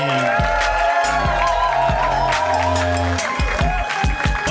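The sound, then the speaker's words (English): Loud, sustained enthusiastic applause from a large crowd, with cheering and whoops mixed into the dense clapping and low thumps underneath throughout. “Enthusiastic applause.”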